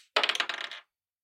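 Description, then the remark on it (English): Large, fat dice clatter across a tabletop in a quick, rattling burst of rapid clicks and bounces that settles within a second, fairly loud, with no voices. “Everyone hates me rolling them, so I love them so much.”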